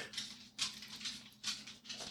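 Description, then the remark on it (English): A dog's paws click-clop across a hard floor in a steady, soft rhythm of about five light taps, with no barking and no voices. “And yes, that clip-clop noise is the dog getting ready to go bark, but he's not barking, which is great.”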